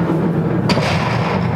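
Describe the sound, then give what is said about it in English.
A single large door slam sound effect hits partway through, a sharp booming impact over a dense, rumbling low background that carries on steadily before and after. “I'm looking for my large door sound effect.”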